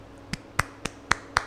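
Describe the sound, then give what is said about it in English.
One person claps their hands five times as applause in a steady, fairly quick rhythm. The claps are crisp, with no talking around them. “For the podcast listeners, I applaud, right?”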